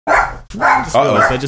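Dogs bark loudly, three sharp barks in quick succession, one right after another with only brief gaps between them, riled up as someone arrives home.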